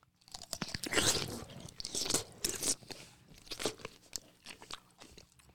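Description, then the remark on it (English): A loud, wet crunch as someone bites into a pickle, followed by several seconds of juicy, crackly chewing in irregular bursts, with no talking. “It's a pickle, isn't it?”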